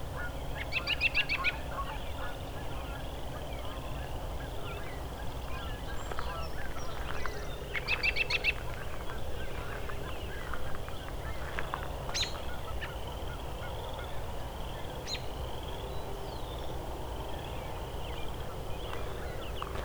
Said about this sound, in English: And the geese are getting closer.